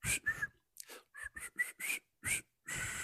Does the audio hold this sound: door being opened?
no